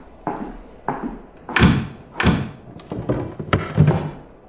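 A series of heavy doors, including side doors, thud shut one after another as they are barred and locked, with wooden knocks and clunks of bars dropping into place, loud with a slight echo, no voices.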